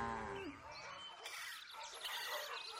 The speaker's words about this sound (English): Cattle. Moo. Moo! That's quite a little bonnet you're wearing there, Mrs. Cow. Moo, moo, moo! Cattle check.